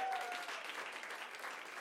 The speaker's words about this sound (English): wave your hands and give them a huge round of applause for all of their work.